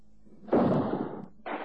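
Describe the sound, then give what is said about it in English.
A revolver is fired at a parcel bomb: a sudden, loud explosive blast bursts out and roars for under a second with a harsh, crackling, shattering texture as a small window is shattered, followed by a second burst of noise starting right after it. “The whole of the small window was shattered by the bomb.”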